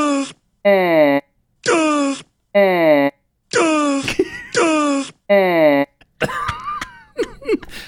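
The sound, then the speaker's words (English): A mother cow bellows in distress as her calves are taken away, six loud, drawn-out moaning calls in a steady rhythm with short pauses between them, followed by a rougher, more broken burst of sound at the end. “So that's a mama cow in distress as she has her watches her little babies taken away.”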